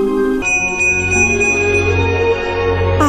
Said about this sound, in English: At one time, most of my friends could hear the bell. But as years passed, it fell silent for all of them. Oh, my heart. Even Sarah found one Christmas that she could no longer hear its sweet sound. Though I've grown old, the bell still rings for me.